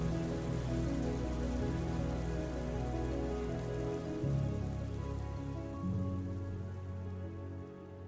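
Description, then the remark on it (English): Heavy rain pours down in a steady, unbroken wash, a dense hiss of drops drumming on surfaces at an even loudness throughout, with no voices and no thunder. “Obviously, this storm is a metaphor, but sometimes the stress we experience from the climate crisis can become all too real.”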